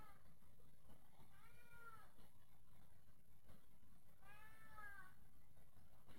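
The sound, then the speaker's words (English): A cat meows twice, each a drawn-out, wavering cry a few seconds apart, against a steady low background rumble with no talking. “Jeez, I fucking hate that cat sometimes, man.”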